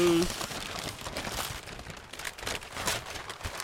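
Wrapping paper being torn open on a gift: steady, loud crinkling and rustling of paper with several sharper ripping bursts spread across the few seconds.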